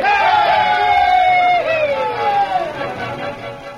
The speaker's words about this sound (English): How about a cheer for the masked man, boys?